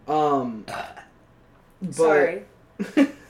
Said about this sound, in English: Sorry. Don't apologize for burping. It's who you are.